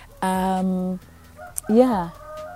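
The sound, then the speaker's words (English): Two loud, nasal calls from birds flying around, just past 7 in the morning: a long, steady honk-like cry followed by a shorter one that rises and falls, with a quiet pause between and no talking. “Oh, birds flying around, you know, birds chirping.”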